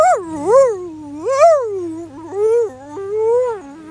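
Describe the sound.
A voice imitates a dog howling: a continuous, fairly loud wail that swoops up and down in pitch several times over a few seconds, with no words spoken, mimicking a dog with separation anxiety a door or two down the hall.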